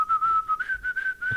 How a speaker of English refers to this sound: The 50th episode is just going to be us whistling and shit.